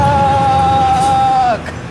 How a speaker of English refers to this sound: Truck!